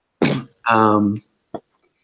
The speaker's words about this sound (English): He sneezed.